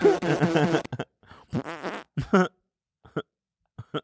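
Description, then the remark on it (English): A quick series of loud, buzzy fart noises, starting with a long sputtering blast and followed by several shorter bursts and little pops with gaps between them. No talking. “The 600 farts, man. It's so genius.”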